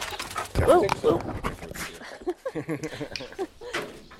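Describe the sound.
A large German shepherd dog jumps up against the microphone, making a loud thumping rustle along with a brief whine, and then a person starts talking.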